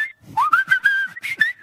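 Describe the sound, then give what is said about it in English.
A person whistles a short, lively tune, the pitch gliding and stepping between notes in a quick rhythm, with soft breathy puffs between phrases. “Can you whistle Skippy, the tune to Skippy, the bush kangaroo?”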